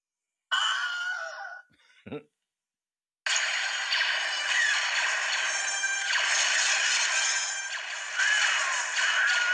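A Wilhelm scream rings out as a stormtrooper falls in the Star Wars scene where Leia and Skywalker swing across a ravine, a short, loud, high-pitched yell, followed by a quick swoosh, then a long stretch of dense, noisy film action sound.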